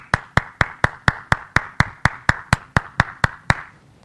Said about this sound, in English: When I'm doing the podcast, I have to use the sound effect for the applause.